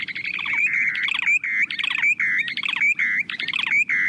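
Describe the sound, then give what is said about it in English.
A short-billed dowitcher's bubbling, trilling breeding call, given as the bird glides earthward from about 150 feet up with its beak open, repeats in quick rolling bursts, each a warbled run of rapid notes, loud with no talking over it. “You can hear their bubbling and trilling from up to a quarter mile away.”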